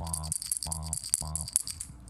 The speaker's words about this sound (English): Yeah, we're starting bells, off real light this time. Bells. There we go. We're starting off light.